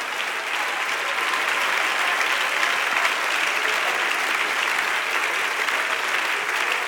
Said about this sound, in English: Somebody ought to clap and magnify him right now.